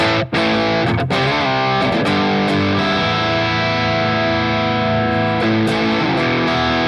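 Heavily distorted electric guitar through a pedal in its blue aggression mode, gain at about 1 o'clock, playing sustained, buzzing chords with a thick, saturated tone, loud and steady throughout with a few brief breaks between strums.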